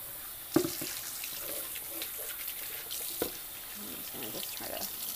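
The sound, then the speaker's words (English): Water splashes and swishes in a sink as items are rinsed, with a steady running-water hiss and a couple of sharper clunks and splashes. Faint voice-like sounds drift underneath. “Rinse them off and throw them back in some clean water.”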